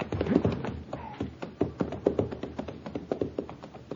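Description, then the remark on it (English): Steady clip-clop of a rented horse's hooves pulling a buggy, a rhythmic run of hollow knocks, easing slightly as it moves off, with no voices. “I rented the horse and buggy in Cheyenne, and the lieutenant furnished me a driver.”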